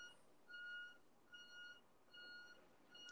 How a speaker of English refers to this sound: The hell is that? I think it's somebody's car pulling into the driveway downstairs. Maybe a truck or a car or something. Yeah, it sounds more like a truck